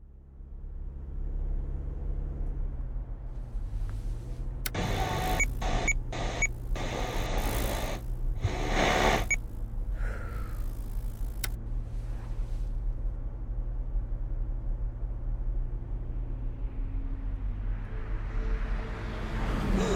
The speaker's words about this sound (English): Whoa, what the hell? Learn to drive, you weird car.